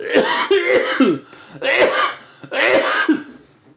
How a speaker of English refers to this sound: Notes to self, edit out the preceding cough, or else leave in this note to self to make it clear that you talk about editing out the preceding cough, but decided against it.